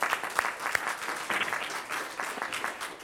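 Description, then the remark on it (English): A crowd applauds steadily, a dense patter of many hands clapping at an even, moderate loudness for the whole stretch, with a few sharper individual claps standing out near the start. “I think we can give her applause.”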